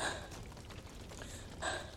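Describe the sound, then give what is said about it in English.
Two heavy, breathy exhalations about a second and a half apart, soft, as Arya lies panting on her back, exhausted, after hauling herself up and over a rock ledge. No talking. “She lies panting on her back, her exhausted arms limp at her side.”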